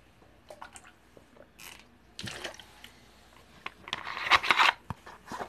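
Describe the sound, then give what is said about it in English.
A plastic bottle of Smart Water is handled and opened, with small clicks and crinkles, then a sharper crackling crunch of the bottle as someone drinks. No one speaks. “And also, this is not sponsored by Smart Water, although I am about to drink some Smart Water.”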